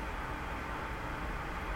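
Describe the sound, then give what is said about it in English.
A steady, even hum of rushing air, like airflow through ventilation vents, continuous and fairly quiet with no changes or breaks, and no voices. “So I want you to close your eyes, and I want you to listen to the air that's coming through the vents.”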